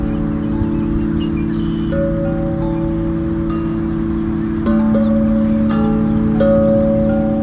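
Huge wind chimes hanging in a giant oak tree in New Orleans ring with deep, sustained, overlapping tones, a few new notes struck every couple of seconds, over a steady bed of wind noise; no one speaks.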